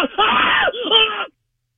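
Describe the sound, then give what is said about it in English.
A loud, drawn-out human scream from a phone caller calling from Polish Hill, in two bursts, the first longer and strained, the second rising then cutting off, heard alone with a phone-like tinny quality. “you know, really did come to some harm, because I'd hate to waste a good scream like that.”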